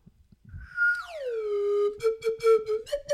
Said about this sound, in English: Did you get it? No. That's close enough. Oh, God, it's harder than it looks. Maybe you should use the G. Maybe you should use the G slide whistle.